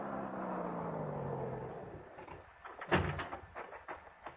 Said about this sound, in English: And I heard it. The hot rod coming down the soggy wagon road.